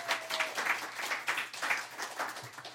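An audience applauds the show's producer with dense, crackling hand claps that hold steady for about three seconds, even in loudness, with no voices over it.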